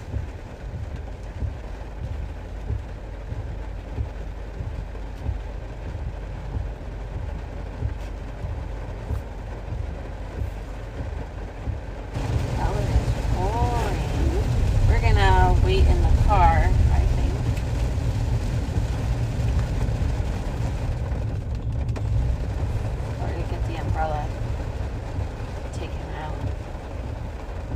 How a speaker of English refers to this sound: Well, because I wanted them to get the ambiance of the rain.